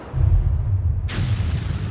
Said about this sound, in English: There. Did you hear that? That was a gunshot. No matter how many times I hear them echo across these hillsides, they still make my heart race like a frightened deer caught in headlights on a moonless night.